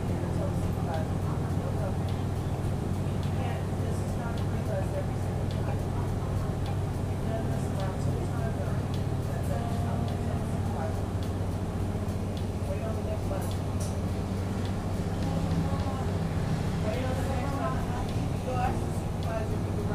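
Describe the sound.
Steady low engine rumble of a bus fills the whole stretch, a constant droning hum with faint, indistinct voices and small rattles mixed in underneath.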